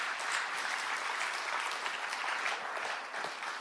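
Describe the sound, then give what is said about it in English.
A crowd claps in praise of Jesus steadily for several seconds, a dense, even wash of many hands applauding at a consistent loudness with no voices standing out. “Now give him a hand clap of praise.”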